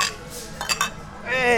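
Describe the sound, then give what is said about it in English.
Two quick, bright clinks of glasses touching in a toast, ringing briefly, with voices murmuring and talking around them. “Cheers. Oh, we can do this.”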